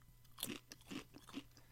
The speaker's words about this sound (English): What you munching on? Chips.